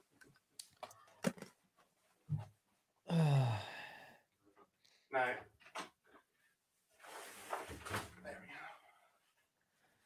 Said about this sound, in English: Here, I'm going to close my door.